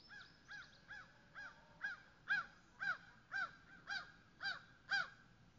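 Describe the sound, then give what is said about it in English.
A crow caws repeatedly in a steady rhythm, about ten harsh calls spaced roughly half a second apart, growing slightly louder, with no talking. “The crow calls to remind me.”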